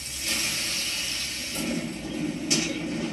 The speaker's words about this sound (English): Member of American Home Shield, which means this faucet may be freaking out, but I'm not.